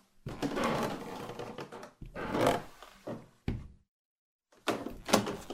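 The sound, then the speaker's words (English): A tattered white door at the end of a hall, opening onto a staircase, creaks and scrapes open in several grinding bursts, with heavy rattling and a dull thunk between them, then a brief silence before a final harsh scrape. “The tattered white door at the end of the hall opens to a staircase.”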